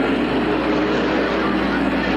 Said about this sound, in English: Yarborough jumps out in front of the car care Chevrolet as they scream into turn one. And it's Dale Yarborough in the lead in turn one. Richard Petty high on the outside. In second place, David Pearson on the inside, closing up